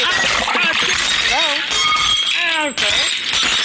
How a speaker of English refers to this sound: It just swung around and knocked a glass of prune juice right off the table. Oh. The carpet's all stained now.